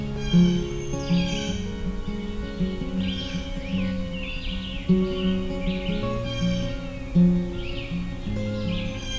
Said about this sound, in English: Red-shouldered hawk again.